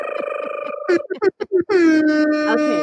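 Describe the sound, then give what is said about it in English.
A voice mimics a hip hop air horn, with a long buzzing blare, a quick run of choppy honks, then another drawn-out blast sliding down in pitch, loud. “I like to do a little hip hop air horns just because it's my favorite part of the story.”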